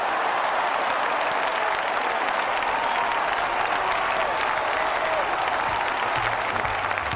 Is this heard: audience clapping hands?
yes